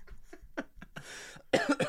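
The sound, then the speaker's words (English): A person coughs: a few short throaty bursts, a brief raspy exhale, then two harsh, loud coughs near the end, with no talking. “Other news, my cough is back.”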